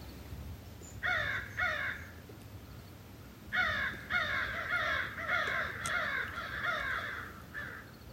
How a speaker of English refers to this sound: Quiet news today. Except for the crows, of course. The crows are being the crows.